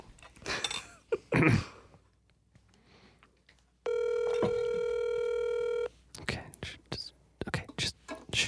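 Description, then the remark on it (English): A phone call to someone's mother rings out over a speakerphone: one steady, buzzing electronic ring lasting about two seconds, with quiet talking and whispering before and after it. “It's ringing.”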